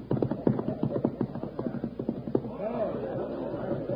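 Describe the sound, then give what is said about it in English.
A cutting horse's hooves clip-clop in a quick, steady rhythm, fairly loud, for a few seconds as it is put to work, then ease off as a brief voice-like call rises over the background near the end. “If it's a cutting horse, he's worth plenty. Well, let's see how he works.”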